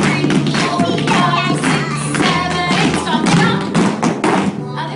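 A child's feet stomp in a steady series of heavy thuds and taps on a hard floor, mixed in with music playing and some faint background voices.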